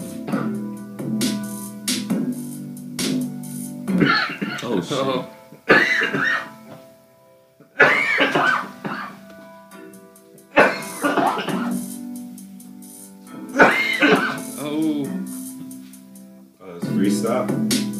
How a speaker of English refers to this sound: I see you, …, coughing here, right in there.